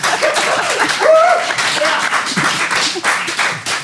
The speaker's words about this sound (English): All right, that's enough. A round of applause for both of our teams.